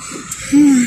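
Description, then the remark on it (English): A single yawn: a breathy intake followed by a drawn-out, low voiced groan that swells loudly for about half a second before trailing off, with no talking. “Sorry, yawning.”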